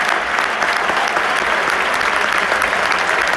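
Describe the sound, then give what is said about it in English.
A bullring crowd at a bullfight clapping steadily during a standoff between the bullfighter and the bull, a dense wash of many hands applauding at once for several seconds, loud and sustained without pause, with no voices standing out. “But whenever there is a kind of standoff between the bull and the bullfighter, you can hear everyone clapping.”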